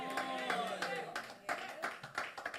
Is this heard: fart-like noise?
no